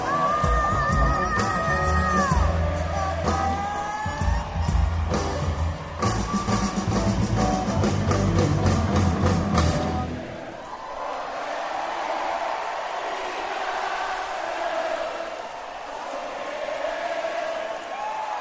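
A band plays loudly with pounding drums for about ten seconds, then the instruments drop away and a large crowd keeps singing and chanting together in a steady, blended roar.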